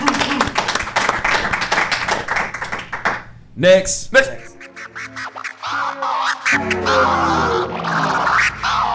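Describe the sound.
A crowd applauds for a few seconds with quick, dense clapping, which fades as a voice takes over and talking continues over a soft background.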